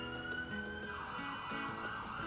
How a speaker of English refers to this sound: Other cars did the same. This created room for the ambulance to zoom past.